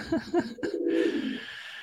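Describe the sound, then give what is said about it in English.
A pet pigeon named Gérard coos: two short low hoots followed by a longer, rolling coo that gradually fades. The low, throaty call is moderately loud and has no talking over it. “I'm a fan of the pigeon.”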